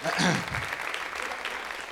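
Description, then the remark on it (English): A crowd applauds with steady, dense clapping, fairly loud and sustained, with a voice briefly audible at the start. “You guys can clap for them.”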